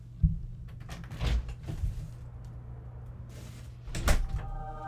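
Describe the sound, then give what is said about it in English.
A studio door opens with a few sharp clunks and rattles spread over several seconds, moderately loud, over a steady low hum, with no one speaking. “Is it somebody at the studio door?”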